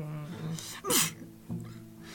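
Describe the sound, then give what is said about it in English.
A chihuahua gives one quick, sharp sneeze, a brief breathy burst, heard over a steady low background hum, with a faint snuffle shortly after. “The plaintive sneeze from the chihuahua.”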